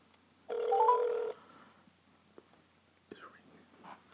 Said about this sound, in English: It's ringing. Let's see if she picked up.